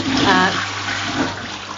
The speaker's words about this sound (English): That toilet flushes.